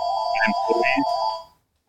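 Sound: home landline telephone ringing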